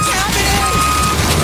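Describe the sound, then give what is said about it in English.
Loud garbage truck lifting a dumpster, its reversing beeper sounding as a high electronic tone over a steady rumbling engine throughout. “What's that beeping? What? They're lifting the dumpster.”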